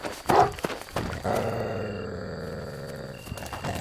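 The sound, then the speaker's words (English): A hound, Barney, attacks a hooded man with a couple of sharp, harsh snarls, then breaks into a long, deep, rumbling growl that holds steady for a couple of seconds before fading into scuffling. “This brief diversion allowed Jeffrey to wriggle loose and escape the macabre scene as howls and growls filled the air behind him.”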